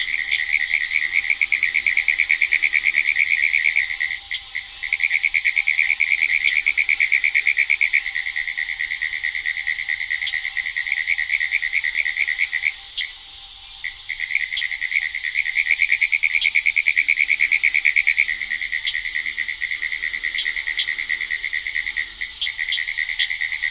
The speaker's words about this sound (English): boggy spot that these pine woods tree frogs lift their froggy voices in song